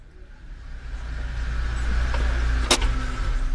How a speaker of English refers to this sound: A little while later, Honorable Makemba's car drew up outside Aunt Lily's flat.